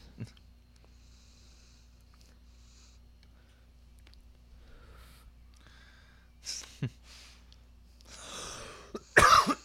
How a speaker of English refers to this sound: Cough right into the mic. There we go.